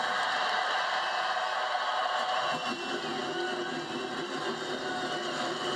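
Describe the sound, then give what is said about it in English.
A steady, dense roar of many NASCAR race car engines starting and running together, loud, holding a constant rumbling drone throughout with no voices. “Now it is my honor to start this race. Gentlemen, start your engines.”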